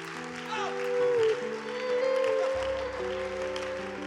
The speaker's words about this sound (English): You hear that clap, that hand clap of applause? That's for you. That's somebody letting you know, I care about you. This church cares about you.